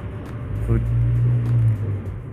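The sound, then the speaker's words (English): A heavy truck drives past loudly in the background, its deep engine drone swelling for a couple of seconds before easing off slightly, with no talking over it. “And as always, thank you for driving the truck past really loudly in the background there.”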